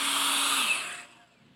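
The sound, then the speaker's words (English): A voice imitates a revving power saw: a loud, buzzing, hissy whine that holds steady for about a second, then drops in pitch and fades out quickly. “We got a power saw. Come on, rev that baby up.”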